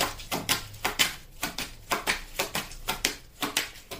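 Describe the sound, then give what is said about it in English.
A deck of tarot cards being shuffled: a steady run of quick, crisp slaps and flutters, about three per second, repeating evenly with no voices. “As I'm shuffling these cards and waiting for one to come out, okay, that's too many.”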